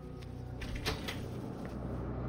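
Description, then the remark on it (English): A door opens with a single sharp click and a brief scrape near the middle, over a steady low background hum with no voices. “Greg turned to open the door.”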